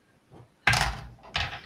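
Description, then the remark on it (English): A door is thrown open with a loud, abrupt bang, followed less than a second later by a second heavy knock. Both are sharp, with only a faint rustle beforehand and no voices. “Yeah, you go in and just open the door like if it's nothing.”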